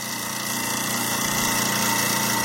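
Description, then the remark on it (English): A garbage disposal grinds a fairly big slice of real lemon with a loud, steady motorized whir, a low buzzing drone with a harsh rattling texture that holds constant and swells slightly toward the end. “I'm putting a lemon in there, and I probably shouldn't have. I think it might be too much for the garbage disposal.”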